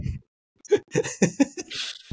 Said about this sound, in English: sorry, I'll clear my throat for about three more minutes.